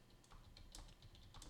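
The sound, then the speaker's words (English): Rapid, irregular clicking of keys on a computer keyboard, a steady patter of close taps with no voices, over a low background hum. “Well, while you're typing that, I can just do my segue.”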